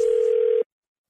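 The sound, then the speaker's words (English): A steady, loud telephone dial tone before a call to a local sporting goods store hums on a single pitch for just over half a second, then cuts off abruptly into silence. No one speaks. “today I call a local sporting goods store and let them know I'm not completely satisfied”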